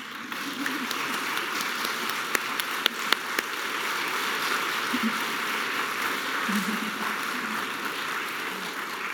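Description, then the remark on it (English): An audience applauds the choir and orchestra before a church service: a dense, steady patter of many hands clapping for about nine seconds, with a few sharper individual claps popping out and faint voices underneath. “Can we applaud you ahead?”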